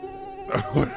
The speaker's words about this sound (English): I don't know why there's a mosquito sound effect. Is that what that is?